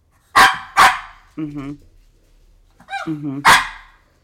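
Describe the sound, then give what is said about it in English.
A dog named Moonstone barks twice in quick succession, then makes drawn-out whiny, yowling sounds before one more loud bark, fairly loud, with quiet gaps between, in reply to being asked who its favorite in the house is. “Okay, so he said Tiger is his favorite. Tiger feeds him the most people food.”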